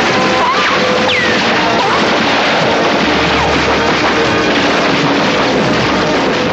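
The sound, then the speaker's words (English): Loud, dense automatic gunfire rattles on without a break, layered over a chaotic, rumbling din and occasional whistling tones, with no voices. “Somebody heard the gunfire, peeked in the stables, saw all the dead bodies, and said, "Jesus Christ."”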